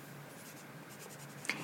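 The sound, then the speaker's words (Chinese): A pen scratches across paper in short, uneven strokes, fairly quiet, ending with a sharper tap as the tip presses down, as someone writes notes through the night. “他整夜做笔记，设想如何在搬家后再见到伊桑”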